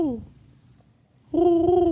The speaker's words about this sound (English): Really? Pleasantries with a pigeon?